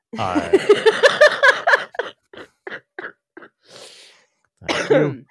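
Laughter from a sick person breaks into a run of short, hacking coughs in quick succession, a raspy breath, then one final harsh cough.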